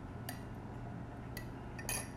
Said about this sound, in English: Sorry, I'm taking a sip of my tea.